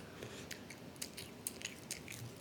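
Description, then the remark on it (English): Crunchy chewing of a raw broccoli stem, a series of sharp bites and crisp crunches repeating every half second or so, with no talking. “The stem is my favorite part. It's your favorite part? Why? Because it's so crunchy.”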